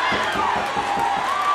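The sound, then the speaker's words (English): A wrestling arena crowd cheers Dusty on in a dense, steady roar that stays loud the whole time, with shrill whistles or shouts rising above the noise and a faint rhythmic thumping underneath. “So you're doing commentary live because you can hear the arena fans.”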